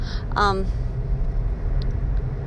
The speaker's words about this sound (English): Sorry, you know, I'm driving home.